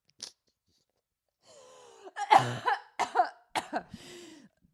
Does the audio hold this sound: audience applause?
no